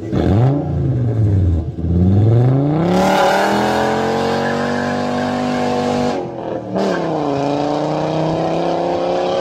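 A VR5 car engine (a VR6 with one cylinder removed, two cylinders on one side and three on the other, as fitted to the Vento and Bora) revs hard, its pitch sweeping down then climbing steeply, with a gravelly, throaty rasp. It holds a high, strained note, dips briefly and picks back up. It is loud; nobody speaks.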